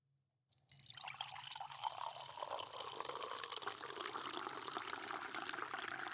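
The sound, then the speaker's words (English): After a brief quiet start, liquid begins pouring steadily into a glass, a continuous splashing gurgle that holds at an even level until the end. “We're gonna do the pour.”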